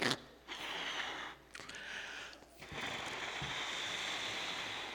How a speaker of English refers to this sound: Give me a second while I blow up this balloon.